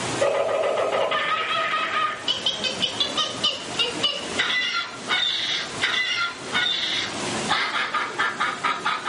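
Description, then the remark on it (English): A human voice mimics a frenzy of outraged birds, with loud, harsh squawks and shrieks tumbling over one another in rapid, uneven bursts for several seconds, without any ordinary speech. “Suddenly, the treetops explode in a frenzy of outraged birds.”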